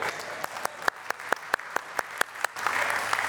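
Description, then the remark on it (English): A small audience applauds, with a steady run of sharp, distinct claps standing out over a softer patter, then swelling into a fuller, denser burst of clapping toward the end. “Give that guy a clap.”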